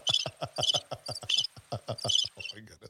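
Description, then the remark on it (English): Crickets chirp in a quick, steady rhythm of short bright pulses, loud, with no voices over them. “Where are the crickets?”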